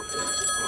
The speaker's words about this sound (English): Oh, sorry, my phone's going.